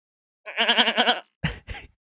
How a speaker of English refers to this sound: First up, beluga. Toothed whale.